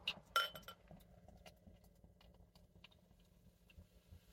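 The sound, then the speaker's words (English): A couple of sharp glassy clinks, then a steady, low, bubbling rush as beer is poured into a glass, with faint ticks and fizz throughout. No one speaks. “Right, let's get it poured and see what we got here.”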